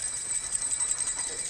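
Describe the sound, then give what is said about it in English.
Several handheld bells, rung by children and by the adult leading them after a count of three, ring together in a continuous, bright, high-pitched jangle that holds steady and fairly loud throughout, with no voices over it. “On the count of three, I'm gonna ring this bell too, all right?”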